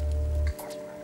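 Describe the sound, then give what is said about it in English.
Heavy rain and wind-driven spraying water hiss steadily over a city, across windows, cars and the Arroyo Seco freeway, with a deep rumble underneath that drops away halfway through, leaving a thinner wash of spray and scattered splashes. “Quietly at first, but then waves and waves of spraying water all over funnels of wind, whipping back and forth between windows and cars.”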